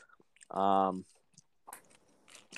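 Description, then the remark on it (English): Someone chews salami, with a loud hummed tone partway through, then soft wet crunching and smacking mouth noises at a moderate level. “Anyway, so that's me chewing on salami.”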